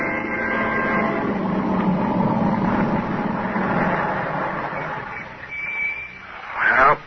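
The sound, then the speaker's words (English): A car engine rumbles steadily as the car drives up to a boarding house, then the noise eases off as it slows and stops, ending with a brief higher squeal or click. “drive up to the boarding house after their picnic”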